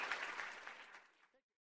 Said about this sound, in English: So join me once again in a round of applause for a wonderful talk.